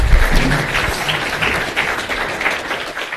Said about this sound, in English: Let's give our panelists a round of applause. Thank you.